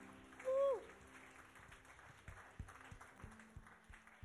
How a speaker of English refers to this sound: So clap yourselves as you welcome yourselves to Teen Chapel.